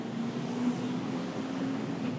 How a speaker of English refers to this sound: Truck.